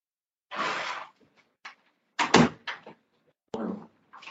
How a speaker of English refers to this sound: Let me just shut the door, my mate. Oh.